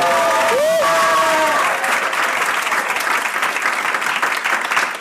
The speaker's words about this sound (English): We're recording live at DFTB 18, and we are recording the actual August monthly podcast. So we're kind of trying a few bits and pieces. So just to prove that we're actually here, can everyone give us a big round of applause and make some real...